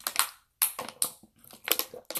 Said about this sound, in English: Let me take a swig of water, y'all. I got kind of carried away. Hold on.